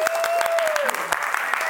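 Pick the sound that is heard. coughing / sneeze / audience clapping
audience clapping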